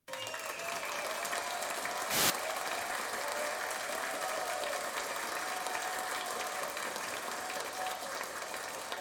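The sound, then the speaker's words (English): An audience of about 680 people applauds steadily in unison for several seconds, a dense, even wash of many hands clapping at once with a brief louder burst early on, no voices standing out. “Everyone here thinks that, you know, everyone clapped in unison.”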